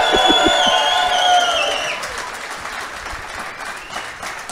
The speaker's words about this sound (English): And if you don't mind, please give my wife a round of applause. She's been working for about 3 hours straight back there.